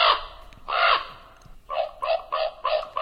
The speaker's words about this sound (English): The estimated global breeding population is about 29 million, and Partners in Flight lists them as being of low conservation concern. The common raven, Corvus corax, today's Talkin' Birds featured feathered friend.